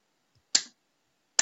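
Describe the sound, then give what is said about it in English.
Two sharp hand claps, done as a left-right brain hemisphere exercise, spaced almost a second apart, each a crisp, bright smack that fades quickly, with silence around them and no talking. “So it's more clap there.”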